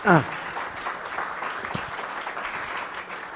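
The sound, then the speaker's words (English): A crowd in Baltimore applauds jazz musician Jimmy Heath, a dense wash of many hands clapping, opening with a brief louder burst and holding an even level throughout. “let's give them both a big round of applause.”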